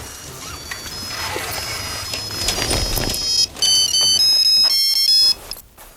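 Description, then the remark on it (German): A mobile phone rings inside a backpack while its owner rides a racing bike, a bright electronic melody, its tones slightly muffled at first, then clearer and louder before cutting off, with faint background noise throughout. “am Nachmittag vom Karate-Training auf seinem Rennrad zum Internat zurückfuhr, klingelte sein Handy im Rucksack.”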